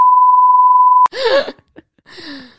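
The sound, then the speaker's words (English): A loud, steady censor bleep over a joke holds a single flat tone for about a second, then cuts off abruptly and gives way to wordless vocal reactions, something like groaning or laughing. “Okay, that's being edited out. That's being edited out for sure. Beep.”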